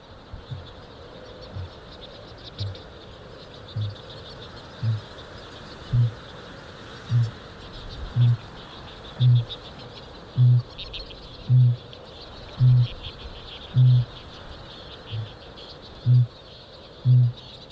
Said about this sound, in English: Kākāpō, the booming of the male kākāpō is a little bit like the heartbeat of the land.